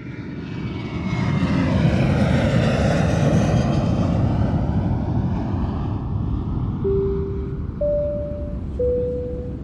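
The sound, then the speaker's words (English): A steady, loud airplane engine drone fills the cabin, heard from a passenger seat during a flight: a continuous low roar with a faint whooshing hiss, joined near the end by three brief soft electronic tones. “I was catching myself nodding and I sat upright in my airplane seat.”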